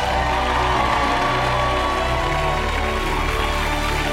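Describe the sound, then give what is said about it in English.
The Daily Show audience claps and cheers without letup as Roy Wood Jr. enters to deliver the show's annual State of Black Shit Address, a dense, steady roar of applause with scattered whoops and shouts mixed in, holding at the same loud level throughout. “So please rise, but not really. You can just clap as Roy Wood Jr. enters to deliver The Daily Show's annual State of Black Shit Address.”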